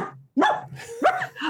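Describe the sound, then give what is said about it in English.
A person imitates a dog barking: two short, loud woofs roughly half a second apart, with a brief tail of breathy voice after the second and no speech. “And you go, I couldn't figure out where this dog was coming from, and I went barking.”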